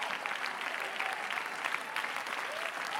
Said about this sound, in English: Oh, somebody clap if you believe that. Come on, somebody shout if you believe that. Come on, I wish somebody would clap their hands with everything in them.